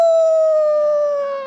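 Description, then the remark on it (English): A single sustained, high-pitched howl from a human voice imitating an animal, loud, holding steady and sliding slightly downward in pitch as it fades at the end. “he would wander around the graveyard, the cemetery, the tombs, howling”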